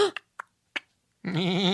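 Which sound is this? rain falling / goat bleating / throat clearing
goat bleating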